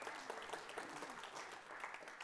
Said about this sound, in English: You're not clapping very enthusiastically, but I'm really excited.